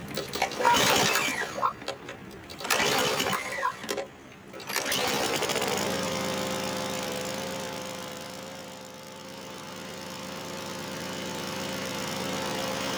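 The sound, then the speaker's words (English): The small motor of a Bird scooter whirs into a steady, humming drone after a few seconds of choppy rattling bursts, running continuously with a faint high-pitched whine on top. “Could you please step off the bird scooter?”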